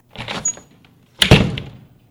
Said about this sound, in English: so we're going to open the door to the garage.